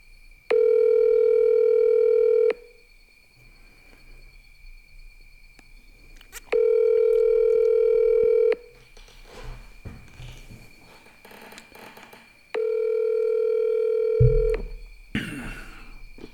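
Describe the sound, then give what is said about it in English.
A phone call's ringing tone sounds three times, each steady buzzy tone lasting about two seconds with long silent gaps between, loud, as if heard through the handset. “Ringing. Ringing.”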